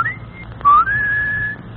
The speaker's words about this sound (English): I'll give her the old whistle so she'll know where we are.